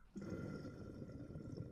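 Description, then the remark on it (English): Bong water bubbles steadily and loudly during a test hit to check the water level, a dense gurgling rumble that starts abruptly and keeps churning without pause for over a second. No voices are heard. “you want to see how much you want to hit it, at what level, because if not, you will get a bunch of water in your mouth, and that's happened to me so many times, and bong water is fucking trifling.”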